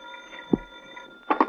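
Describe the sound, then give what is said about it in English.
A telephone in a hotel room rings in two quick bursts at the very end, a bright jangling bell after a quiet stretch with a faint steady hum and a single soft thump. “To bear me out, the phone was ringing in my hotel room when I got there.”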